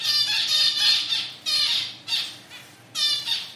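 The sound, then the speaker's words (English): A series of bright, nasal calls from female zebra finches in a university laboratory aviary, several short harsh chirps in quick succession, clear with a faint hum underneath and no talking. “At the university's laboratory aviary, female zebra finches provide plenty of audio examples for Dan's research.”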